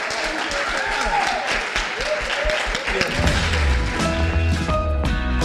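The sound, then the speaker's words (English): An audience applauds a group of Memphians with dense, steady clapping and a few cheering voices mixed in; about halfway through, music with a deep bass line comes in and plays over the continuing applause. “Please give a round of applause to these extraordinary Memphians.”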